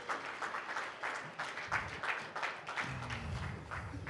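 A crowd breaks into applause, many hands clapping in a dense, steady patter that holds for several seconds, with a faint low hum of voices underneath.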